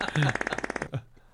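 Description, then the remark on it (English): A fart sound effect: a quick, rattling burst of about a dozen rapid flapping pulses lasting under a second, ending in a short low blurt before fading out. “Like, he was sitting next to me, just going through, like, all the fart sounds.”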